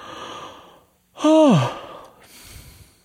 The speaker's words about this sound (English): And I still feel exhausted. Even talking about it, I'm yawning.